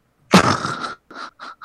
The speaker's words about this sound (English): Are you okay? It's like heavy breathing or something.